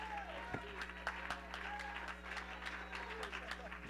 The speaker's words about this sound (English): Somebody clap your hands and shout unto the Lord.